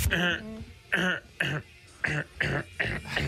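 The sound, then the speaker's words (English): A man clears his throat into a microphone several times in quick succession, short harsh rasping bursts with brief pauses between them, fairly loud. “So he clears his throat like that in the microphone before every day.”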